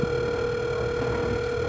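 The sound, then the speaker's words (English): A telephone line rings on an outgoing call that goes unanswered, a steady electronic tone that holds unbroken throughout, fairly loud, with no voices over it. “Oh, I don't think I'm gonna get it picked up.”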